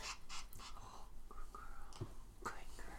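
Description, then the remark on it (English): A female Pomeranian dog pants quickly and steadily, soft breathy bursts repeating about twice a second, quiet, with no talking over it. “She's a very cute Pomeranian.”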